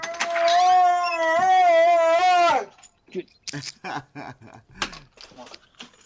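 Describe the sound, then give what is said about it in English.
A dog lets out a loud, wavering howl-like whine lasting a couple of seconds, then falls quiet as a person starts talking. “I've got my own dog problems. I'll give them a minute to calm down.”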